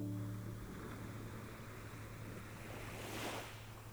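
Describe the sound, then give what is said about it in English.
Ocean waves wash and break on a shore in a steady, broad rush, swelling into a brighter surge near the end, with a low hum and some wind noise underneath. “And the sound of the waves activates the parasympathetic nervous system, which promotes relaxation.”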